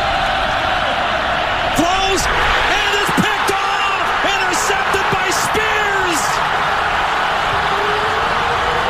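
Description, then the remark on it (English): A stadium crowd at Jack Trice Stadium roars and cheers after Iowa State recovers a fumble against TCU, in a loud, steady wash of noise that holds for the whole clip, with scattered individual shouts and whoops rising above it. “Just the, listen to the crowd. That was my takeaway to the reverberation that you heard, the excitement in that crowd.”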